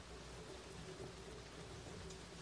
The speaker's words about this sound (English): It's raining in the background.